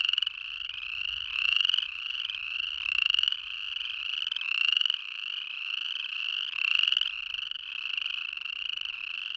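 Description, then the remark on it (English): A dense chorus of chorus frogs calling nonstop in Yellowstone, overlapping trilling creaks forming a loud, continuous wall of sound with rhythmic surges every second or so, no voices present. “Sometimes the frogs will chorus from April all the way into July. And when they really get going, the sound can be intense, like this.”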